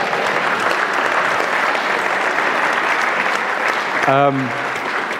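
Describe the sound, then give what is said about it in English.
A steady round of applause, dense and even clapping that holds at the same level throughout, with a brief voiced shout or cheer rising over it near the end. “Oh, round of applause.”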